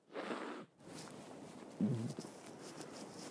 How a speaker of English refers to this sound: But right now, pardon me, blowing my nose,